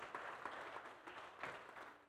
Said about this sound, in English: If you're a mama, wave your hand in the air. Amen. Can we give them a hand clap of praise for being mama?